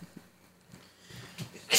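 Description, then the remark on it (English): A sharp sneeze bursts out at the very end, loud and noisy, after a quiet stretch with a few faint breathy sounds and a quick inhale just before. “Bless you.”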